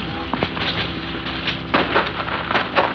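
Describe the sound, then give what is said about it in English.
Steady rain pours down on a park by church grounds in a dense, continuous hiss, with brief louder spatters and splashes popping up now and then. It sounds fairly loud, with no voices. “I was stuck out of this rain for a minute.”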